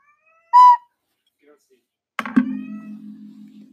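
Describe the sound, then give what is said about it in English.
A cat lets out one short, loud, high-pitched meow, then after a pause a dull thump is followed by a steady low hum that drones on. “Why is the cat meowing so loud?”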